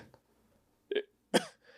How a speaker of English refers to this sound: Man, I just like coughed in the microphone. Yeah, gosh.